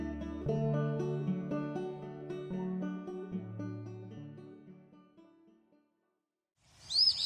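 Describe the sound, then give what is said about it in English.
A few seconds of mellow instrumental music fade into a short silence, then a brief, bright bird call bursts in clear at the very end. “Who's that bird?”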